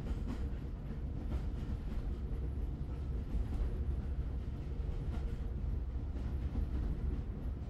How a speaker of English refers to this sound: I'm on a railroad train, just as when Arthur and Mabel brought me from the country.